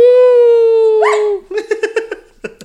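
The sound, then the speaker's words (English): A dog named Kennedy gives a long, steady whining yawn that bends upward in pitch near the end, then breaks into a short run of choppy, uneven vocal pulses before trailing off. “He won't yawn on cue. Well, he just did it.”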